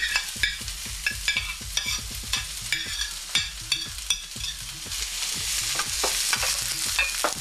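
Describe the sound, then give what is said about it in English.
Vegetables sauté in vegetable oil in a frying pan heated to medium-high, a steady sizzle broken by rhythmic clacks and scrapes of stirring, with no voices. “And I'm going to saute my vegetables first. Cover the frying pan with the oil. Add the vegetables.”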